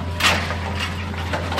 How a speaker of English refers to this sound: On a big, bare spot in this sea of paper trees, the giant claw of a Hitachi excavator grabs skinny logs out of a metal boat.